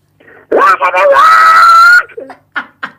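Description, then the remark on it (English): A loud rock-style vocal scream slides up into a high, sustained note held for over a second, then breaks off into a few short breathy vocal sounds. “Now, a lot of people who have heard you sing do say you've got that bone's got that scream.”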